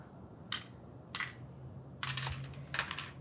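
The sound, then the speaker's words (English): Dice clatter across a hard tabletop in several quick bursts, short rattling clicks at first and then a longer tumbling spill, over a low background hum, as a player rolls dice for agility to catch thrown keys. “Am I rolling agility as well to snatch him out of his hands?”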